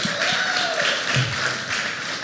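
A crowd applauds steadily, many hands clapping in a dense, even wash of sound, with a few brief cheers or voices rising faintly through the clapping.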